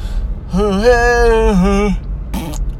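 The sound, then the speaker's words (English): A long, tuneful yawn held for more than a second with a wavering pitch, loud, then a short fart-like blurt right after it. “That's how I yawn. Musical yawns with a fart at the ending.”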